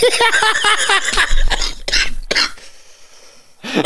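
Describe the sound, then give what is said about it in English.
A person coughs, a few harsh, throaty bursts following some strained vocal noises, then the sound trails off into a brief quiet before another short burst at the end. “I don't know why I'm coughing so much today.”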